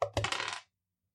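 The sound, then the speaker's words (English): Dice clatter across a hard tabletop in a quick rattle of several bouncing impacts that lasts about half a second, landing on 8 and 6 for a total of 14, then settles into silence. “8 and 6 is whatever I got 14.”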